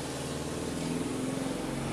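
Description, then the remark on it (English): A loud car engine rumbles with a steady, throaty drone and a faint rise in the middle, heard on its own with no voices. “Damn, y'all car loud as hell.”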